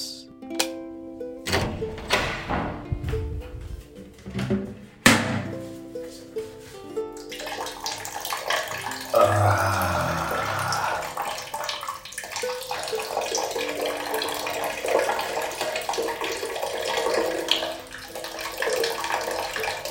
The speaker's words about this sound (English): Okay, so I'm in the shower.